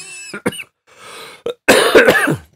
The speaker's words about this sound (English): Are you going to be editing all these coughs out? This is probably the worst I've ever heard. And well, it's because I've been talking for half an hour, that's why.